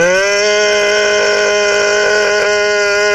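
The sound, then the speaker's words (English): A voice imitates the spaceship engines at maximum in the game Artemis with a loud, steady, buzzing drone that holds one pitch for about three seconds, its rich harmonics wavering slightly. “As soon as they hit, like, maximum engines, it's just like this...”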